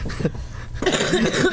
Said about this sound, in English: Listen to this smoker's cough. Phlegm. Sexy. It is sexy.